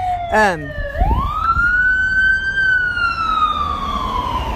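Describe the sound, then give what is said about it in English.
An emergency siren wails past, starting with a quick warbling yelp, then rising into a long, steady tone that slowly fades, with low traffic rumble underneath. “Another siren.”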